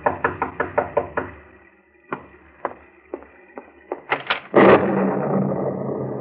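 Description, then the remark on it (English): A rapid series of about six sharp knocks on a door on a dark, stormy night, then a few slower, scattered raps, followed by a louder thud and a burst of rustling noise. “And as you sit by your fireside, you're startled by a knock on the door.”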